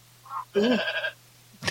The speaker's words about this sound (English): Oh, yeah, goat.